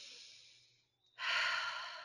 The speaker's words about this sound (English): Breathwork can be just a gentle inhale through the nose and an exhale out of the mouth.